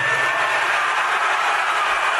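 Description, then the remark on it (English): A large crowd at a Trump rally in Alaska cheers and roars loudly and steadily for a couple of seconds, a dense wall of noise with no single voice standing out. “Listen to that crowd.”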